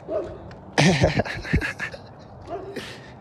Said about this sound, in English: Do you hear that bark? That guy is barking from the ball section. That's not even a dog no more. There's a werewolf over there.